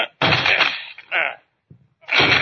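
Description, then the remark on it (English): Police batter down the door of a room: loud, broad crashing blows in three bursts, a long splintering one, a shorter one, then another heavy crash after a brief pause. “Come on, let's break down the door.”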